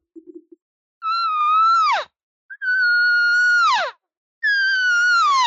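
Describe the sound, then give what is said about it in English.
Three drawn-out elk cow calls made by hunters calling to a bull elk, each a loud, nasal, steady high mew lasting about a second before bending sharply downward at the end. A few faint low taps come before the first call. “And so they keep cow calling.”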